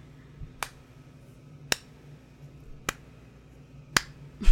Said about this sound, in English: Thank you. That's for slow clapping.